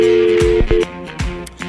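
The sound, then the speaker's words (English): A steady, low telephone dial tone hums and cuts out briefly as a phone call is made, while heavy thumping hits and sweeping booms play over it; no one speaks. “And we got to make a phone call here.”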